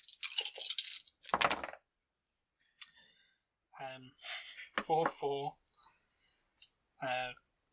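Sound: dice being rolled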